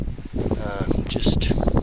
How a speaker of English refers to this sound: Yeah, that wind, boy, it's powerful up here.